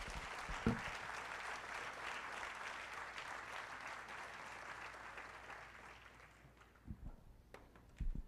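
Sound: audience applauding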